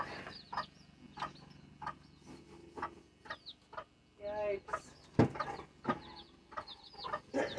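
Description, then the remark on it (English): Chickens cluck in short, repeated bursts at an irregular rhythm, with a couple of louder, drawn-out squawks mixed in and a brief spoken exclamation partway through. “Anyway, they're real cute, but I do have to keep up after them. That's the downsides to chicks.”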